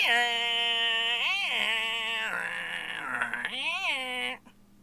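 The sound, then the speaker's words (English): A person mimics a dial-up modem handshake with a loud, continuous, screechy warbling voice, the pitch sliding up and down in bends for about four seconds before cutting off abruptly. “I'm assuming that was a dial-up modem.”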